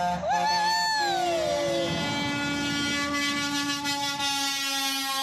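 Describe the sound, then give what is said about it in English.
Loud, sustained truck air horns blare together, several overlapping tones that swoop in pitch at the start and then hold steady for several seconds, with no talking. “I stand outside on Middle Valley Road doing that all day long, and nobody beeps their horn for me.”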